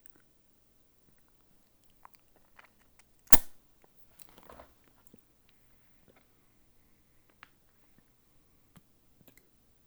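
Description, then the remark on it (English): The button of a gummed-up cannabis vape pen of smoked honey gives one sharp click, followed by a brief soft crackle and a few faint scattered ticks amid quiet. “You know, having a vape pen of smoked honey here. There we go. It just kind of gummed up on me again.”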